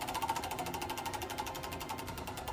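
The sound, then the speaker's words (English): A prize wheel spun to pick a category turns with a rapid, steady run of ratcheting clicks, fairly loud, with no voices over it. “All right, tell us what to do. Spin that wheel.”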